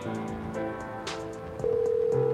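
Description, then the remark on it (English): A phone dials out with a quick run of electronic keypad tones, then a steady ringback tone begins and holds, clear with no one talking. “Let's see if she picks up.”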